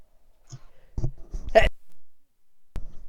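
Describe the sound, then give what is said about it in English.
A single sneeze: a couple of quick breathy catches lead into one sharp, explosive burst, followed by a brief click and quiet. No one speaks. “No, I sneezed.”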